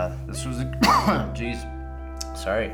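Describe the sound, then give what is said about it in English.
A single loud, close-up cough bursts out harshly right into the microphone, framed by brief murmured vocal sounds before and after. “That's always an attractive cough right into the mic.”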